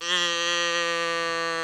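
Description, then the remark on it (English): A single drawn-out cow moo, steady and buzzy with a rich, nasal tone, holding at an even pitch and loudness for over a second with no talking. “Yeah, we've got the cow handy.”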